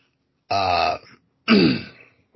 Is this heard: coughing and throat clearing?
yes